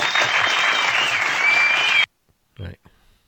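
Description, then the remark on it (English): A hand clap sound effect snippet: a loud burst of crowd applause, dense clapping lasting about two seconds before cutting off abruptly, followed by a brief bit of talking. “That deserves a hand clap little snippet.”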